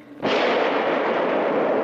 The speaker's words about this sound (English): We're back out with Calloway out in the tunnel, and we hear a single gunshot.